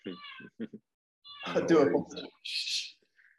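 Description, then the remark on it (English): A cat lets out a drawn-out, wavering meow, preceded by a few short voiced chirps and followed by a brief breathy hiss. No clear talking over it. “Sorry, my cat's going.”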